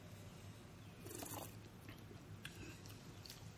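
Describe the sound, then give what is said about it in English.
A quiet first sip of a high-ABV, chocolate- and vanilla-flavored liquor, with a brief slurp and soft mouth and swallowing noises over a low background hum; no one speaks. “I'm a little afraid of how hot this is going to be alcohol-wise when I take my first sip, but we'll find out.”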